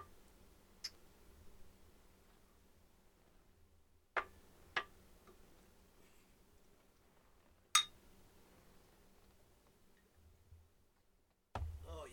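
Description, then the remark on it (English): Glasses clink in a New Year toast: a handful of short, bright taps spaced a few seconds apart, including a quick double clink, with no talking. “We're gonna clink and drink.”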